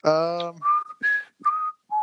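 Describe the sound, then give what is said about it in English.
Someone whistles a few bars of the Jeopardy theme, short clear notes with brief gaps between them, opening with a buzzy voiced note before the whistling begins. “Please hold. Jeopardy music here.”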